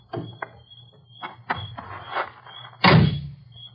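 Clattering clunks of a house door being tried, handle and latch rattling in short bursts, then a louder, heavier thump and scrape as the door is pushed open. No one speaks.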